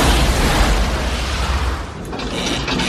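A loud, muffled explosion in a spacecraft oxygen tank, with a dense, rumbling roar that stays heavy for about three seconds, briefly thinning before surging again. No voices.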